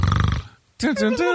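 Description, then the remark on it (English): A person briefly imitates a man snoring with a rough, buzzing rasp, then after a short pause makes a voiced, drawn-out vocal sound, fairly loud. “And then later on he was snoring”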